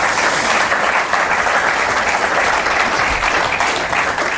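A loud, steady round of applause from a crowd, with dense clapping sustained evenly throughout and no voices breaking through.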